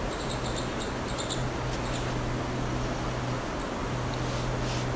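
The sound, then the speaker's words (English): Faint, rapid high-pitched chirps and twitters from two green warblers fighting come in quick bursts mostly early on, set against steady outdoor hiss and a low constant hum. No one speaks. “Sounds like we have 2 green warblers fighting now.”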